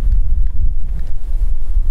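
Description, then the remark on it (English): Loud, continuous low rumble of wind buffeting the microphone on top of a building, with gusty fluctuations throughout and no voices. “Bit windy. You can probably hear the wind. I'm up on top of the building, so it is a bit windy.”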